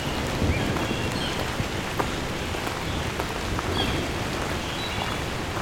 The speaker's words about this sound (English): And a lot of rain. Well, not that much rain. Wouldn't be recording.